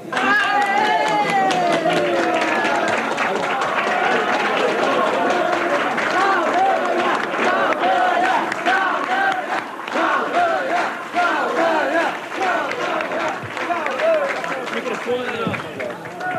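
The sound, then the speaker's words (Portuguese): A large crowd at the Brazilian Communist Party (PCB) convention in Rio de Janeiro shouts enthusiastically, many overlapping voices forming a loud, unbroken roar that holds steady for the whole stretch, with scattered higher cries rising above it. “Esses gritos entusiasmados saíram da convenção do PCB, no Rio de Janeiro.”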